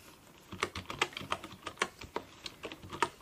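Typing on a wooden keyboard: a quick, uneven run of crisp clacking keystrokes, about a dozen in three seconds, fairly loud with no voices over it.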